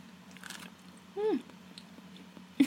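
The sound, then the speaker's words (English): Quiet chewing and munching of sandwiches by people eating, with soft crunchy bites scattered throughout, plus a brief hummed voice sound midway over a low steady background hum. “Podcast listeners, I'm so sorry you just listened to us munch, but like, this is so good.”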